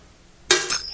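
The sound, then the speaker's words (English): A ceremonial coin is dropped into a Christmas charity kettle as a contribution to those less fortunate: a sharp clattering hit, then a second clink that leaves high, bright metallic ringing hanging in the air. Silence before it, no voices. “the ceremonial coin, please. Now, son, please drop it in the kettle.”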